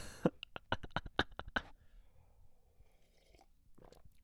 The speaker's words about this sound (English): By the way, how is it listening to me take a sip of water on a podcast? How fascinating is that? How lovely a sound, you know?